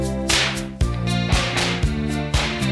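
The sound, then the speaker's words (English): Sharp, hard slaps crack out at a steady rhythm, about every half second, loud over a sustained musical backing with no voices. “the slaps are getting, oh my god, dude.”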